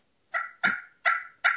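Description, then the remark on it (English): A Primos Crystal the Freak slate pot call played with a striker makes a turkey purr, given as four short, raspy bursts in a steady rhythm, fairly loud, with no talking. “I like a slate because you can purr on it”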